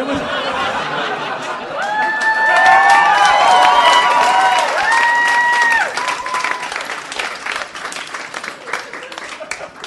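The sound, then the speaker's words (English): An audience gives a standing ovation, breaking into loud, sustained applause for the full ten seconds, dense clapping mixed with whistles and cheering whoops that rise and fall before the clapping thins slightly toward the end. “You just got a standing ovation for a pun.”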